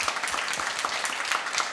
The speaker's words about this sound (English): Let's give them a big round of applause. Woo!